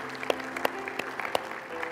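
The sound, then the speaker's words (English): A crowd claps steadily to give the Lord a hand clap for those saying a prayer for the first time, a dense patter of many hands with a few sharper, louder claps standing out, sustained at moderate volume with no one speaking. “Would you give the Lord a hand clap for those who are saying that prayer today for the first time?”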